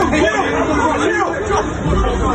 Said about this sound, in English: Julian Francis, former opponent of Mike Tyson, just one punches a guy. And you can always tell not only by the sound of the impact, but the reaction of the crowd, how that goes.